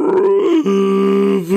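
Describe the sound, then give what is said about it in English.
A voice imitates the weird scream a creature lets out after healing itself: a loud, sustained, strained vocal cry with a rough groaning edge, sliding down in pitch partway through, then holding a steady drone, with no words. “And then after that, it's going to let out some kind of weird scream, like this, like...”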